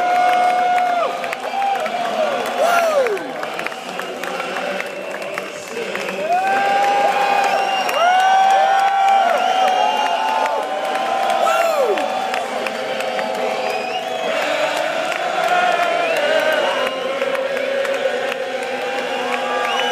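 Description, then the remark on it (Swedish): A large golf crowd in the USA sings the American national anthem together in unison as golfer Tom Lehmann stands on the first tee and sings along just before his shot; sustained drawn-out notes rising and falling, loud and continuous throughout with an open-air sound and scattered shouts. “Hela publiken sjunger amerikanska nationalsången, och Tom Lehmann, precis innan han ska slå, sjunger med också.”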